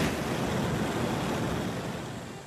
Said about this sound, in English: Well, you can hear the Cigar Dave signature lock and load single jet flame. I can control the flame. Huge tank. Almost fits in my hand like a rocket-propelled grenade. That's what I will use today to light my Monte Cristo Classic.